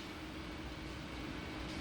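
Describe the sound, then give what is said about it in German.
A steady rumble of a moving subway (U-Bahn) train, with a broad low roar and faint rattling running evenly throughout and no voices. “Wir sind jetzt in einer total leeren U-Bahn.”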